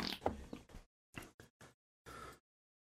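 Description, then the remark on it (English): A fart rips out as a string of raspy, creaky sputters: several short bursts broken by brief gaps, ending in one longer, buzzy blast. No one speaks over it. “Nobody heard that fart, did they?”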